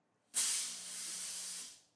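A fog machine lets out a single steady hiss that starts abruptly, holds bright and airy for over a second, then tapers off. No one speaks.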